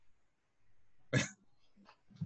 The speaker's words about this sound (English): Dang, I was in the spot today, man. The homie coughed, though. I'm like, yo.